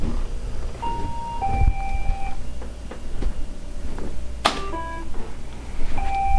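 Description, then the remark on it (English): A Roomba robot vacuum, away from its dock and asked through Google Assistant to locate itself, plays a locator melody of clear electronic tones. Short, steady pitched notes step up and down in a simple tune over a low rumbling background hum with a few clicks. “So now you can hear the musical tones that it's generating.”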